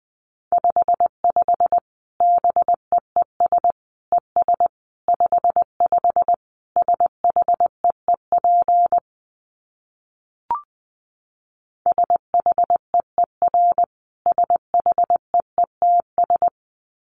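Morse code beeps at 20 words per minute on a single steady mid-pitched tone, keyed in quick dots and longer dashes at a brisk, even pace, broken by a pause with a lone click before the sending resumes.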